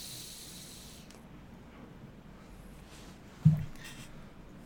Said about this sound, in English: that humming, by the way, folks, is just Max's heater